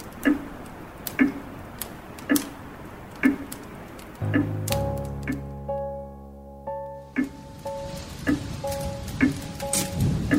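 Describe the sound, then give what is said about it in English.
A steady hiss of rain falls in the background while a clock ticks evenly about once a second, and a low sustained musical chord swells briefly through the middle. “It rains more often in Portland than you might think.”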